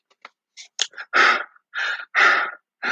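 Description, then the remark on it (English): A voice imitates the heavy, exhausted panting of Bambosi, a hunter in a story who has brought back a wildebeest twice his size and sits before the king: a few quick short huffs, then long, loud breathy pants at a steady rhythm, with no other sounds. “He sat down before the king and was visibly exhausted and panted.”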